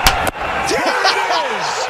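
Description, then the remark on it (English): Two sharp, loud smacks of a baseball popping into a catcher's mitt on a 3-2 strike, a quick pair of impacts, followed by voices and crowd noise, as the Washington Nationals win the World Series. “Dude, did you hear that glove?”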